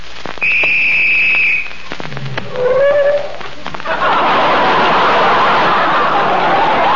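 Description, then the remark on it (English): A police whistle, blown by mistake, gives one long, shrill, steady blast, followed by a shorter wavering tone and then a sustained wash of loud, rushing commotion. “Somebody blew the whistle by mistake.”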